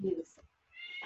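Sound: cat meowing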